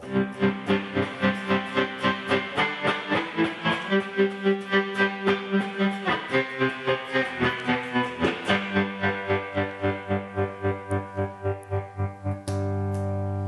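A distorted electric guitar played through a tremolo pedal plays sustained chords chopped by a fast, steady tremolo pulse, the volume throbbing rhythmically throughout before ending on a held, unpulsed chord. No one speaks.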